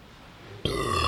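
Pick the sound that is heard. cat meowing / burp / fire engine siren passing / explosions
burp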